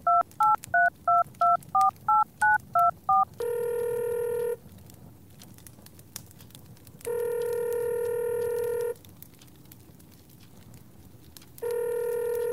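A rapid run of about ten keypad dialing beeps on a cell phone, then a loud, steady ringing tone that repeats three times with quiet pauses between. No one speaks.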